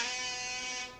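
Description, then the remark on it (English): A single loud, buzzy vuvuzela blast holds one steady, brassy drone for about a second, then tapers off at the end. No one speaks over it. “It's a vuvuzela, baby.”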